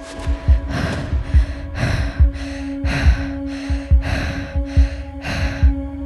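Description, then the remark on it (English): Heavy, frightened breathing of a person clutching a bat with an intruder in the house, quick panting breaths in a steady rapid rhythm, over a faint low hum and soft thumping pulses underneath. “You clutch your bat tighter as your breathing gets heavier and your heartbeat quickens.”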